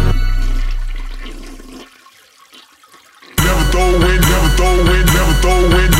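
A toilet flushes with a rushing whoosh that gradually drains away into near quiet, then a loud, thumping music beat abruptly kicks in.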